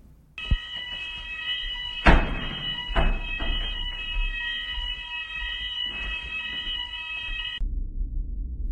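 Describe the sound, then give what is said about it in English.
A loud, continuous electronic hospital ICU fire alarm tone rings steadily for several seconds, with heavy thuds of doors slamming, then cuts off abruptly, leaving a low background rumble. “More interestingly, I have a recording of the ICU fire alarm and doors slamming the night a resident died in room 36.”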